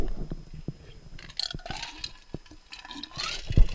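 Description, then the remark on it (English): Water is poured into a glass, the trickling sound climbing in pitch as it fills, with a few small clinks and knocks around it and no one talking. “Get some water here.”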